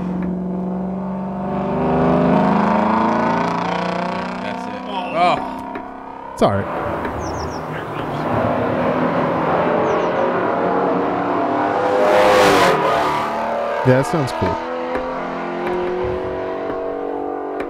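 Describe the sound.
A car engine revs up and holds a loud, rising whine, then surges again in repeated bursts, with people talking over it now and then.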